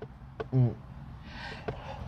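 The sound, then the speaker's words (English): A single sneeze: a brief voiced intake followed by a soft, breathy burst, with faint background noise and small clicks around it. “Bless you.”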